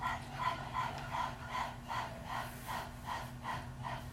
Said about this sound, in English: And all we're going to do is practice breathing like breath of fire. So when you stick out your tongue and pant like a puppy.